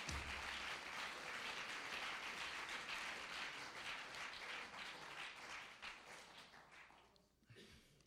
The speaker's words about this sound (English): Come on, clap your hands one more time.